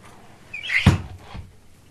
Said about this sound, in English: All right, I'm going to close the window again. Hold on.